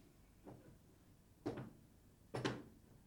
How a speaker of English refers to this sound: Creaky door.